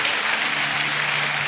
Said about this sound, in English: Let's give God one more hand clap of praise this morning before we all sit down.